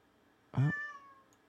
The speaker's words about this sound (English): There we go. I can hear the cat.